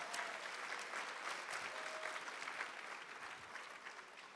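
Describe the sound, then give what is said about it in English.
A record crowd at the Synergy 2019 Ohio Leadership Training Day claps steadily for several seconds, a dense, crackling wash of many hands that stays loud and even throughout, with scattered faint whistles or cheers mixed in. “Give yourselves a hand.”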